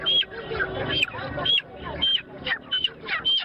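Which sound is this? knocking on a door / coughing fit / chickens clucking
chickens clucking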